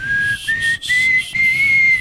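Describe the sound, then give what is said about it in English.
A person whistles a single steady, slightly wavering high note, held for about two seconds with a couple of brief breaths breaking it, with an airy breathy edge and no talking. “Can you not whistle? Well, I mean... No, it sounds a little more like this.”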